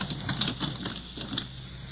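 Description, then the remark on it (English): Soft, quick pattering taps of a cat's paws as it pads off on four feet in pitch darkness, a light irregular run of quiet footfalls with no voices. “Something padded off on 4 feet. God, smells like a cat.”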